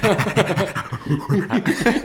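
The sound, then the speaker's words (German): A voice imitates an excited dog panting, quick rhythmic huffing breaths repeated steadily for a couple of seconds, fairly loud, mimicking how a baby reacts like a dog on hearing footsteps on the stairs. “Er hört es schon im Treppenflur, da hört er schon die Stufen und dann wie so ein Hund ein bisschen.”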